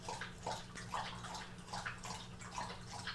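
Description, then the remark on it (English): A dog laps water from its water dish right next to the recorder, steady rhythmic wet slurps about two per second, with a low hum in the background and no one talking. “I didn't think about the fact that recording right next to the water dish was really the best idea.”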